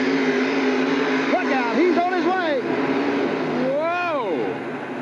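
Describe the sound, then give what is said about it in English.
A Ford Aeromax 9000 heavy truck engine roars loudly and steadily for several seconds as it pulls a sled, dominant, with a muffled, echoing loudspeaker voice rising and falling over the din. “Aeromax, 9,000 Ford heavy truck. What? The Bud Boss cooking.”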